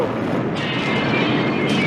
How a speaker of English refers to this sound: Like, that's a really good practical explosion. Is that maybe like a tiny gas station? No, probably. That's the real deal. Look at the flames that were coming out of the ground.